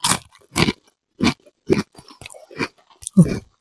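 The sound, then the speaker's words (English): Loud crunching of thick-cut, heavily seasoned rib-flavored potato chips, a series of sharp crackly bites and chews in an irregular rhythm, with no talking. “I mean, that's big time crunch.”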